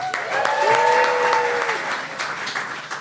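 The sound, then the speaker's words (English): An audience applauds steadily as a guest is welcomed onto a show, the dense clapping holding at a fairly loud level for a few seconds with a faint whoop or cheer rising briefly near the start. “Please give Charlie a round of applause, everybody.”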